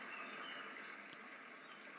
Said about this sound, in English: This is water.